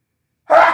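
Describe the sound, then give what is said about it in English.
A single sharp sneeze bursts out after a moment of silence, loud and breathy, then trails off quickly. No one speaks. “Bless you.”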